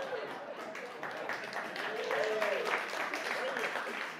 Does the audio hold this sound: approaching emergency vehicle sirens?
no